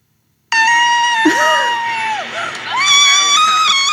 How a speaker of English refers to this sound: So this is not a recorder. This is her screaming somehow.